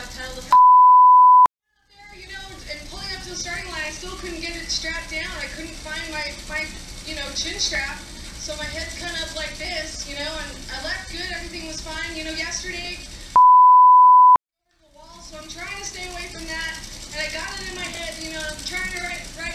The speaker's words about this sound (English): So I've had to beep out some of the words. Wait till you hear this. This is classic. So this is courtesy of Fox Sports 1.